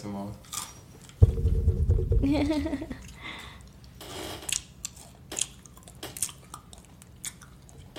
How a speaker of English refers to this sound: I'm really going to be on the mic munching like this.